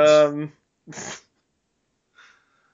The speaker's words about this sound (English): Oh, Chomsky's barking. I know. She's going crazy right now. I don't know what's happening out there.